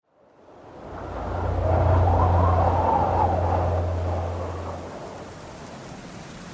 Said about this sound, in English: By 4 a.m, the eye of the storm has passed and the worst of the cyclone is here. Hit after hit of severe wind and extreme rain lashes the city with no end in sight.